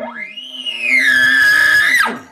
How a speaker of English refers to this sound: Buzz your lips. You buzz your lips and you make your reed do some work. Let's hear it.